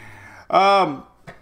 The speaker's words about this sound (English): And their dogs are going crazy.